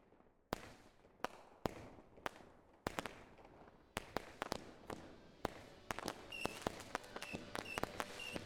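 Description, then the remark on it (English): Fireworks open a music album, banging in a steady series of sharp, loud cracks that grow denser toward the end. Faint whistling and crackling sound between the blasts, and there are no voices. “It's just super awesome, positive music, and it starts with fireworks.”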